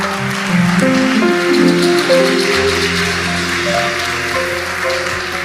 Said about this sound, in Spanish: Un aplauso para nuestro Señor.